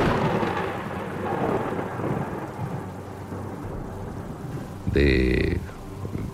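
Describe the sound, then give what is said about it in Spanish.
A night storm of sand and strong wind shaking a house: a steady, dense roar of rain and gusting air over low rumbles, broken near the end by a brief, louder whistling surge. “Esa noche, precisamente, pues más que ruidos, hubo una tipo rara tormenta.”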